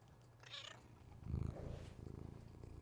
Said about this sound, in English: Hey Mochi. I know you're ruining a podcast. Actually, you're not. Go ahead and like purr into the microphone.